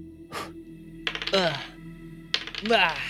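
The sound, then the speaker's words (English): Dice roll across a hard tabletop twice during a tabletop game, thrown for an attack roll with advantage, each a quick clatter that tumbles and rattles before settling, with a short pause between the two throws. “That is 22 to hit again. That will hit it. Okay. Dice.”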